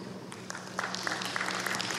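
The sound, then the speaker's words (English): Scattered audience applause, a steady patter of many hands clapping together, fairly soft, with no speech over it. “Okay, I want to hire every last one of those applause folk to be our next ambassadors, because you all, if you are truly one of those experts, good for you.”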